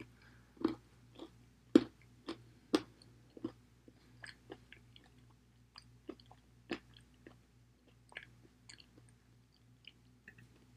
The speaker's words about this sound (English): Sorry, long silence while I just chew on my popcorn. I'm so sorry.